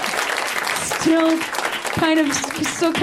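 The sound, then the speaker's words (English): An audience at a Tuesday night show hosted by Cameron Esposito claps steadily for about three seconds, a dense, even crackle of many hands, with a few voices calling out over it. “guys are here to put your hands together on Tuesday night, so you can clap for yourselves.”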